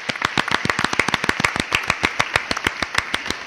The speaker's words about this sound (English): Round of applause. Should we do a round of applause to everyone now? Yes.